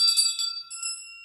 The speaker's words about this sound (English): Ding, ding, ding. I've got my big bell. Where's my small bell?